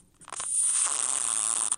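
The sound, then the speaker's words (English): A recorded fart sound, the "Rise and Shine" fart from a phone app, rated 9.0, plays through a small, tinny phone speaker: a short sputtering start, then one long, steady, hissy blast lasting over a second, fairly loud, with no talking. “So, I haven't shared any, but this one is the Rise and Shine fart.”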